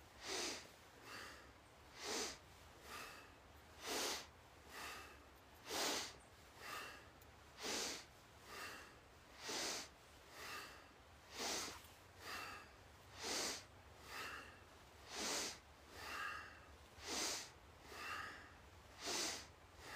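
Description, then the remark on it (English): Forceful breathing through the nose during meditation with eyes closed, mentally chanting Sat on the inhale and Nam on the exhale, in a steady rhythm, alternating stronger and softer breaths about once a second, continuing for the whole stretch with no talking. “Mentally chanting Sat on the inhale, Nam on the exhale.”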